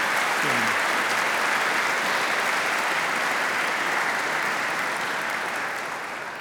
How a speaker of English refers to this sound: So welcome and give them a round of applause. You know, they're nice people.